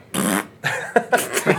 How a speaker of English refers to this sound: Farts are funny.